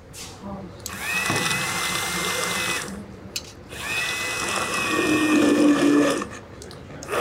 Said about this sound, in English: Once the fava beans had cooked down and the yellow split peas were fully softened, it was time to finish the dish with a handheld blender.